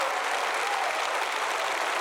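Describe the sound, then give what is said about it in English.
A church audience applauds in praise of God, a dense, even wash of many hands clapping at once with no pauses and no voices standing out, holding at a constant level throughout. “Come on, give God a praise today.”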